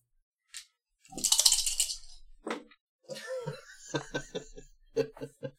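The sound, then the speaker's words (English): Three dice are re-rolled in a game, rattling and clattering in a quick burst of bright clicking, then someone starts talking as the tumbling settles. “Yeah, you'll still have three dice, won't you?”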